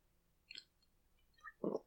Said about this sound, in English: And hold on, another sip of beer would be good.